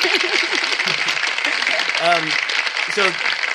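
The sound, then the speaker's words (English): A studio audience applauds steadily throughout, a dense crackle of many hands clapping at once, with a few voices calling out and cheering over the top. “And thanks to the studio audience for the applause there.”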